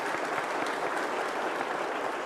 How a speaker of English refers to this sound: And we want to pledge our love and prayers and support to you in your newfound faith by letting it be known by saying amen, amen, and applause. We're so happy for you.